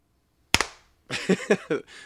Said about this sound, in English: All right, ready? Are you ready? 3, 2, 1, clap.